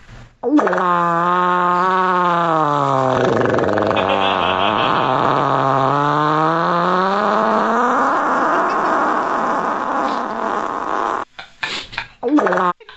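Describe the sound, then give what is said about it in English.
A very long, loud fart rumbles on for about ten seconds, its buzzy pitch sagging and rising in waves before cutting off, followed by a few short sputtering bursts. “Longest fart that we've ever heard on the Sportscast.”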